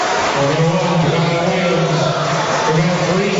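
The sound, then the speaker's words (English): A large basketball crowd boos a foul call on a three-point attempt that awards three free throws. The booing is loud and steady for several seconds, a low, droning chorus of voices blending into a thick wall of disapproving noise with no pauses. “The crowd didn't like it, but Lawyer is going to have a chance with 0.6 on the clock to add to Homestead's 14-point lead, and he missed the first of three.”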